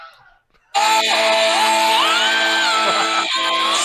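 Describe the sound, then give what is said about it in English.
The Wilhelm scream sound effect: a loud, sustained scream bursts in after a brief quiet moment and holds for about three seconds, its pitch wavering and rising before sliding back down, harsh. “Justice is the Wilhelm scream or whatever it's called.”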